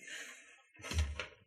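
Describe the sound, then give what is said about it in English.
Tavern doors in a seaside town swing open with a soft creaking rush, then a low wooden thump and flap as they knock together, with no voices. “That's the doors opening.”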